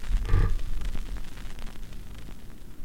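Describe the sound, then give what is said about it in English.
A fire in a studio crackles with irregular, sharp little pops scattered over a steady hiss and a low rumble. A brief tonal swell rises near the start, and the whole sound stays at moderate loudness. “Hear that crackling fire behind me?”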